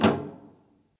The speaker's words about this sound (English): leaps into his office, slams the door shut, and uses his action to lock it.